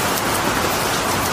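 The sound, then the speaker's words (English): Steady rain pattering on the roof of an RV overhead, a dense, even wash of drops with no voices or gaps, fairly loud throughout. “Rain on the roof of your RV is a wonderful sound.”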